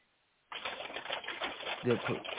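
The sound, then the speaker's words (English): Someone vocally imitates an old cash register: after a brief silence, a loud burst of rapid, rattling clicks and clatter runs for about two seconds, with a short tonal note near the end. “Well, it sounds like somebody's doing an old cash register.”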